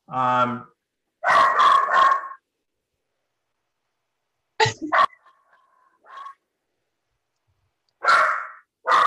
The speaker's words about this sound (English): There go the schnoodles again. They don't want me to tell you about this show. It's a schnoodle secret.